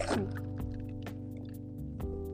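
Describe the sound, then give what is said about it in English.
Water pours steadily into a container with ice in it, a continuous trickling stream with a faint hollow ring and a few small splashy bursts, with no talking. “No, I'm in getting water.”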